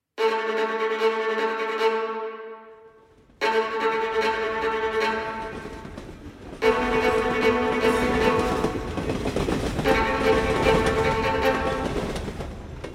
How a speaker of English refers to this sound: train rattled and jolted down the rails.